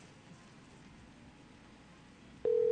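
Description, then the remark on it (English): Soft background hiss, then a click and the steady hum of a phone call's ringing tone starting abruptly near the end, loud, with no one speaking, as a call is placed live on air on the radio show Three Drink Minimum. “It's ringing. Is that what that is?”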